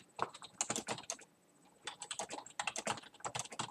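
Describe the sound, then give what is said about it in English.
Rapid clatter of keys on a computer keyboard, two bursts of quick irregular typing separated by a short pause, fairly quiet, with no voices. “Let me just see if I can change things to that, because there is just a straight up mute button on my keyboard.”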